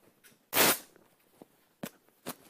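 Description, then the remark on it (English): A fabric curtain, held up by two people, is ripped by hand from top to bottom in one loud, harsh tearing burst, followed by a few short, quieter tearing sounds, with no voices. “The curtain was torn into.”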